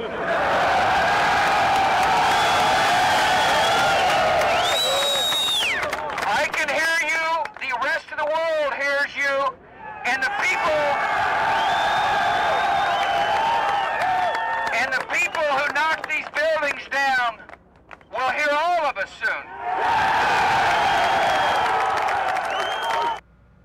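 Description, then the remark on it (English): A large crowd at the site where buildings were knocked down and thousands of lives were lost cheers and applauds a speech in loud, sustained waves, broken by stretches where a man's amplified voice shouts over the quieter roar before the cheering swells again. “That's why he got those cheers that day.”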